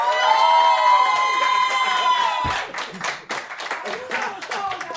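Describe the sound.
A crowd at a battle cheers and whoops with sustained, high voices to vote for the winner, then breaks into a burst of dense, rapid clapping that continues steadily alongside scattered shouts.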